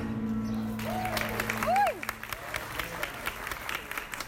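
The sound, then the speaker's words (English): A woman flamenco dancer's heels stamp out a rapid, dense flurry of sharp, percussive strikes, almost drum-like. A brief vocal cry rises and falls early on, with crowd murmur underneath. “you'll hear these like pats in it, and you think it's a drum, but it's actually the woman's heels.”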